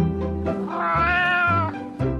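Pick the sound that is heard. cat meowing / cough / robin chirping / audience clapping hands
cat meowing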